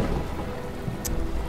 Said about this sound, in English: It was a dark and stormy night. It was raining. There was thunder outside.